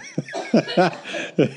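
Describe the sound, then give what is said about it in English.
A woman coughs in a short fit, four harsh, irregular bursts, with strained, breathy sounds between them and no talking. “She's having a coughing fit.”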